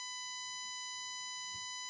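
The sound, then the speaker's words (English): A hospital heart monitor flatlines as a patient flatlines: one steady, unbroken electronic tone sounds faintly and holds without a pause for the whole stretch, with no voices present. “At that moment, Drake and Ginny hear a beeping sound as Sawyer starts to flatline.”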